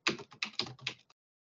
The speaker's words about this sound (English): You're going to hear some clicking here because I'm going to look it up and get you the author's name.